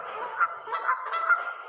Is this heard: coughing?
no